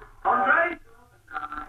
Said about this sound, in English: Oh, my God. He's snoring on the phone. He's fallen asleep on the phone. That's how pissed he is. He's fast asleep.